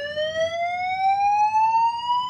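A steady electronic alarm tone rises slowly in pitch, loud and continuous with bright harmonics, sounding alone with no voices over it.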